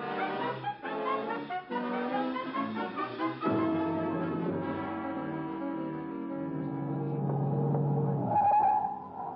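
A car engine roars and revs hard as the vehicle speeds off, with strained, squealing tires skidding over the loud, continuous motor noise.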